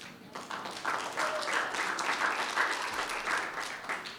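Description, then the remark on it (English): An audience in Arkansas gives themselves a hand clap, breaking into steady applause, a dense crackle of many hands clapping at once that holds at an even, fairly loud level throughout without any voices rising above it. “So why don't y'all give yourselves a hand clap?”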